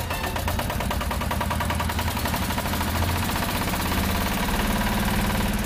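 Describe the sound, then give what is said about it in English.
A car engine runs steadily with a rough, rhythmic chugging that continues throughout without pause, a low mechanical rumble with a rattling, knocking edge and no voices. “Go, you darn car, go.”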